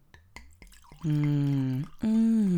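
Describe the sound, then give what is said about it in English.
Yakut wine from Anatolia glugs as it is poured into a glass: a few sharp drips and clicks, then two sustained, low, resonant gurgling tones, the second starting after a brief pause. No one speaks. “Are you going to do the glugging again?”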